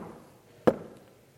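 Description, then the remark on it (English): A single sharp knock on a door across the room at a party, one short, solid thud that stands out against a faint, low background murmur of laughter and tinkling glasses and then fades quickly. “About that time, across the room, barely audible over the laughter and the tinkling of glasses, there came a knock on the door.”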